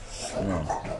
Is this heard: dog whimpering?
yes